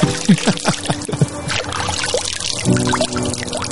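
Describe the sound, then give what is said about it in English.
Water pours steadily in Iceland, a continuous splashing gush with bubbly, gurgling variations running throughout, no voices over it. “It's completely immersive. With water that's wet.”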